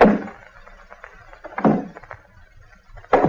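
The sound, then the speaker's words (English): Slow, heavy footsteps of someone on a porch thud across hollow wooden boards, three distinct steps spaced well apart, with faint creaks and knocks in between, without any talking. “He says he heard steps on the porch.”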